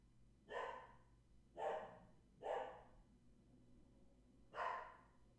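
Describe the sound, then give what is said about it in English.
The dog Stella barks four times, three evenly spaced sharp barks followed by a short pause and one more, with a faint steady hum underneath and no talking. “So for now, Stella's just going to be barking for the near term because she sees a squirrel or something.”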